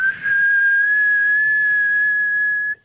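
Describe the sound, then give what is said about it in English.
A teapot whistles with a loud, steady, high-pitched tone. It rises quickly, holds unbroken for a few seconds, then cuts off abruptly. “The teapot whistles.”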